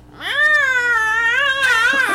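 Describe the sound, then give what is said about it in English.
Someone imitates a yowling cat in heat with one long, loud, wavering wail held for about two seconds, its pitch bending upward near the end. “You know, at night when you hear all those cats yelling like and they're banging?”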